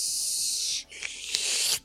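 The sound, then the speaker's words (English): A voice imitates the swirling hot steam of Getty's Storm Drain move, swirling like water at the bottom of a bathtub, with a steady, breathy hiss that briefly dips, then surges back in rising, whooshing gusts before cutting off. No words are spoken. “I think it just kind of starts swirling and swirling, kind of like the bottom of a bathtub, and it goes...”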